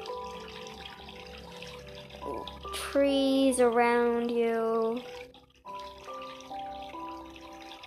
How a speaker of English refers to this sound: The only thing is you can hear is the water dripping down rocks as it falls down from rock waterfalls.